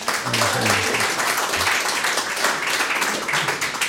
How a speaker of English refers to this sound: You know a good investment when you see one, because you passed our quiz. One out of two. Big round of applause.